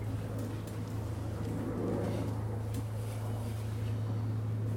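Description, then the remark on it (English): Airplanes drone overhead in a steady, low engine hum with a broad rumbling wash that holds evenly for the whole stretch, with no one talking. “Can you hear me okay with those planes?”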